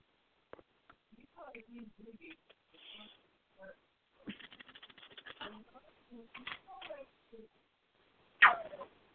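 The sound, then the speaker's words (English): A small pet bird whistles and chirps in scattered short bursts and quick trills, ending with one louder, sharper whistle. “And a whistle from Salty.”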